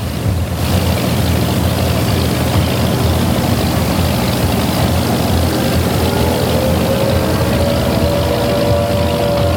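A patrol boat engine roars loudly and steadily, its pitch climbing toward the end as the boat turns sharply toward an airfield and accelerates away over churning water, its searchlight grazing a Sikorsky. No one speaks.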